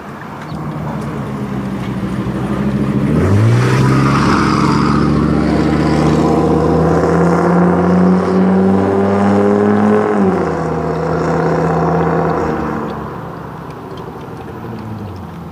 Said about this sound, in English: That was a truck. Smelly truck.